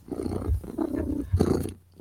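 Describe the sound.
Someone imitates a cat's purr with a loud, throaty rumble, rolling in two rough bursts over a couple of seconds, with no other talking.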